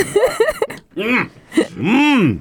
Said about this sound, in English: Hang on. I'm choking on a cricket leg. Hang on here. Yep. Clear your throat.